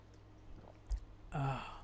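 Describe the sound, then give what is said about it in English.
Water is poured briefly, a short splash and trickle that lasts about half a second after a quiet stretch with a soft bump. No one speaks. “Water. Need to drink more water.”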